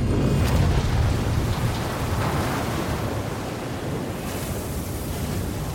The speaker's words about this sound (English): The Sudu Havid rolls onto her side, and with a huge bang, the catches on the external doors break under the pressure, letting in a crushing flood of water.